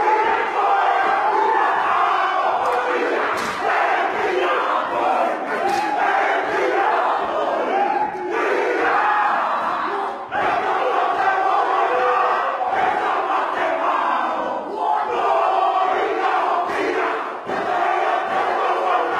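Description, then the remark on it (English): A haka war chant performed as a wedding tradition in New Zealand: a group of voices shouts in loud, rhythmic unison without pause, punctuated by sharp percussive slaps of people punching their chests and stamps at intervals. “Now this is called a haka dance.”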